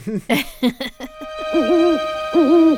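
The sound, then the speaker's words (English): A dinosaur hoots like an owl: a quick run of short, clipped hoots, then two longer, wavering, mid-pitched hoots over a faint steady hum. No one speaks. “We see the howling dinosaur, but this time it's hooting.”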